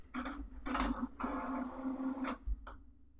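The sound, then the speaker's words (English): A printer whirs and clatters through a few mechanical bursts over a steady motor hum as it shuts down, then winds down with a final short clunk. The machine is fairly loud, with no voices. “Let me just shut off the printer here real quick.”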